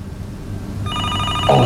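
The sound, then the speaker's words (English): A telephone starts ringing partway through, a bright electronic trill with stacked high harmonic tones, over a low rumbling background; a brief louder burst near the end. No talking. “Oh, bloody hell. What time is it? Oh, for Bert's sake, where's that phone?”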